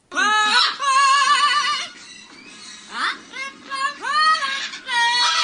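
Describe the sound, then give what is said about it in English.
Chico, a 9-year-old yellow-crowned Amazon parrot, sings the lyrics of a pop song in shrill, warbling phrases with wavering vibrato, several loud sustained notes broken by short pauses, with no other voices. “A new viral video showing a 9-year-old yellow-crowned Amazon parrot starting to spread because Chico, the name of this parrot, Chico, is caught on film belting out the lyrics to”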